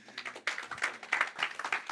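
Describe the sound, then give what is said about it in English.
A church audience claps together, a dense patter of many overlapping hands forming steady applause that swells slightly, with no one talking over it. “So give yourselves a clap.”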